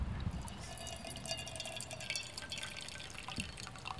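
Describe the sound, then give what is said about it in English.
A thin stream of hot water, poured slowly in a circular motion, trickles and drips steadily over coffee grounds, a soft continuous liquid patter with no talking. “You just want to pour it slowly in a circular motion.”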